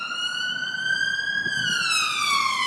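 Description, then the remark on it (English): A loud wailing siren sweeps steadily upward then slides down in pitch as an ambulance passes along a main road beside an airfield, with faint traffic rumble underneath and no voices. “We're right near the main road here, so that's an ambulance going past.”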